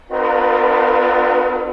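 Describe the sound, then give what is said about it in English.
A coal train's horn sounds one long, steady blast lasting nearly two seconds, a loud, chord-like tone with no voices over it. “And some are literally putting their bodies on the line by attempting to stop coal trains that are bound for New Hampshire.”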